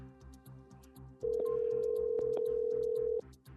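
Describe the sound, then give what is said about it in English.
A steady, loud telephone dial tone holds for about two seconds over a faint rhythmic background beat as a call is placed to a friend, then cuts off abruptly. “We're going to phone a friend.”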